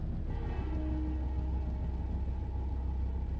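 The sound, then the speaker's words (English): A train rumbles along steadily through a forest in dark, heavy rain, a dense low roar holding even throughout, with a faint humming whine rising briefly near the start. No one speaks. “I honestly just think that time just passes differently on trains.”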